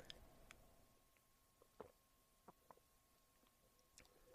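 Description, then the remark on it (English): A person drinking water: a few soft, wet gulps and swallowing clicks spaced out over several seconds, quiet with no talking. “So so let me take a drink of my water.”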